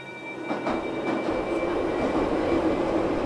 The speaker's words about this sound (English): I remember once I was riding the metro.